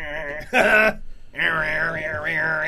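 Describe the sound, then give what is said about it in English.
A voice imitates the grunting noises made while singing along to songs: grunting, groaning sounds in a sing-song way, a short loud burst, a brief pause, then a long wavering tone that rises and dips in pitch. “Kind of like grunting noises, like.”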